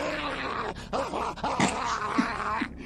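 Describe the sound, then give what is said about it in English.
An Australian man doing a dog impression, from a video called Psycho Dog Man, growls and snarls like an angry dog, rough throaty bursts with rising and falling pitch, loud, continuing for a few seconds without pause. “I searched Australian Man Dog Impression, and it came up straight away.”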